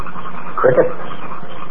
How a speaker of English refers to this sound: Crickets. Frogs. Nightbirds. The whole new world.